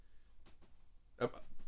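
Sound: hiccups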